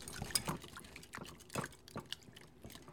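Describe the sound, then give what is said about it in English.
A whisk stirs a thick mixture of chocolate, butter and hot cream in a bowl until it melts into one mass, with soft wet sloshing and irregular light metallic taps against the sides, quiet, with no voices. “Take a whisk and just whisk until all of that is melted into one mass.”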